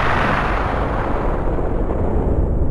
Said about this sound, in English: In the beginning, there was, an explosion.